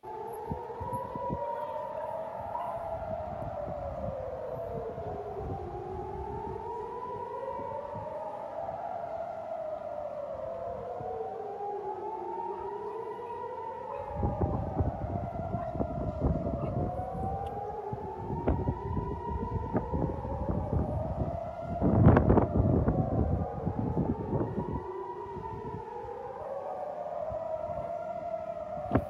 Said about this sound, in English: you can hear the sirens going on this clip we're going to play, and then you'll see the Iron Dome shooting down the missiles overhead.